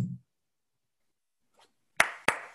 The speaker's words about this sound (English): That's me applauding if you can't.